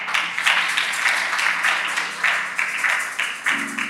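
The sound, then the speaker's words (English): An audience claps together in a dense, continuous burst of applause, many hands patting at once in a steady, fairly loud crackle that holds evenly throughout without fading. “That's a good place for you to clap.”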